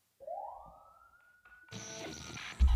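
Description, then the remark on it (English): A siren on an album track wails upward in a single rising sweep, its tone climbing and then holding steady before a burst of dense, noisy music crashes in over it, ending with a heavy low thump. “The siren really scared me, and I don't think you should be allowed to do that.”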